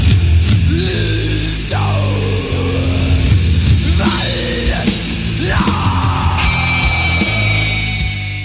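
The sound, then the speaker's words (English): A deep, guttural death metal bellow roars over loud, dense, distorted music, the growling vocal sustained and rising in long strained bursts for several seconds. “It's this guttural bellow that you do.”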